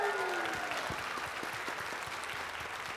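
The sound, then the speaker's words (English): A large crowd at a Hopevale worship service applauds steadily, the dense clapping holding at an even, fairly loud level for the whole stretch, with a faint sustained tone fading out early on. “And how about a bigger clap for us being able to worship God today?”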